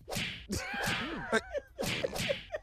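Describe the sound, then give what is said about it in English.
A whip sound effect lashes several times in quick succession, each crack a sharp, bright swish, with brief wavering cries mixed in between the strikes. “No, it has turned into an ass whooping is what it's turned into.”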